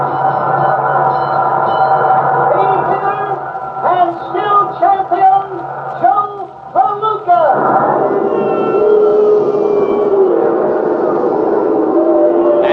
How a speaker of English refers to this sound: For the first time in his sensational career, Joe Palooka's being booed. Yes, even though he's a winner, the crowd's really down on him. Believe it or not, Joe Palooka's being booed.